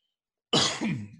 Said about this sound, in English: excuse me, who likes coughing on their podcast? Because you just got a lot of that.